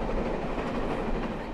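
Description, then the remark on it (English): Steady, loud rumble of a steam-hauled train carriage running at speed after leaving Woking on the South West Main Line, with a continuous rattling roar of wheels on track and faint rhythmic clatter, without any voices. “Once we got up to speed after leaving Woking, I tracked down Marcus Robertson, who led the Steam Dreams team for the first 19 years.”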